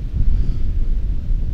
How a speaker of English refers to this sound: Ooh, it's windy.